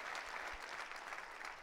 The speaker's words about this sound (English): Come on, clap your hands all over the building.